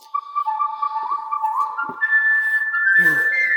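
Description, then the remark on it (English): A clear whistled melody opens a song, its notes sliding and stepping upward in a steady tune, with a brief burst of other sound near the end. “I love the whistling.”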